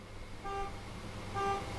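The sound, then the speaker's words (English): A car alarm sounds outside in the city, two short, evenly spaced horn-like blasts over low traffic rumble. Faint, with no one talking. “And there's a car alarm going off.”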